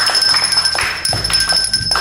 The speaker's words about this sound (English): All right, well, fuck it, then. I'll ring the bell, let the people know.